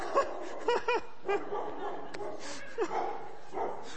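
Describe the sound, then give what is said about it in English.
An excited dog gives several short, yappy barks and yips in quick bursts during a sermon, over a murmur of background voices. “I'm going to preach harder because the dog's getting excited.”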